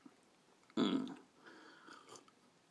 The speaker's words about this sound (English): Excuse me while I drink a coffee. Now, I slurped just to make sure you knew that I hadn't just gone silent for nothing.